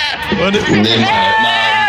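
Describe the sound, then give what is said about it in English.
A loud goat-like bleat from a meme, with a wavering, quavering pitch stretching through nearly two seconds, its strained, voice-like tone sounding almost like a person singing. “that's a goat”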